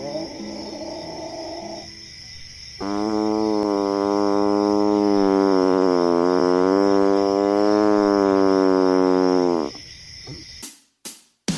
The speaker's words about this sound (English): How many people can actually say they've seen a Bigfoot in person? I know. Look at how the full moon just glistens off of his majestic fur. He kind of stinks. Like 50 wet dogs. Wait. He's arching his back. I think he's about to howl.